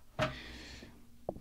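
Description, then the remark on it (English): A quick clunk, then a breathy sniff drawn in over about a second as someone smells a just-opened bottle of craft beer, ending with a small click. Quiet, with no talking. “And we'll give it the old sniff out of the bottle.”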